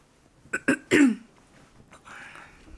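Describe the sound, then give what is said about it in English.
Someone clears mucus from their throat: two short, sharp rasps followed by a longer, heavier hack, then a faint rustle in the quiet afterward. “After I clear my throat of mucus.”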